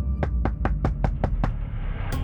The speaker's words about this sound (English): Despite Lisa's warning, Marty was a total mess when police knocked on his door.